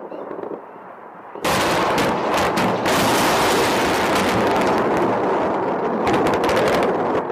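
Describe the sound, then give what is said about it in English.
After a brief quieter stretch, loud sustained gunfire and explosions erupt in news footage, a dense, continuous barrage of bursts and blasts that stays intense for several seconds, with no voices. “On either side, here's some explosions.”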